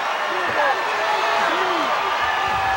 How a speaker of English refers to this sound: Anderson now. And that brought an eruption out of the Houston crowd.